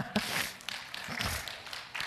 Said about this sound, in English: Y'all clapping like y'all watching a golf thing. Y'all can do better than that.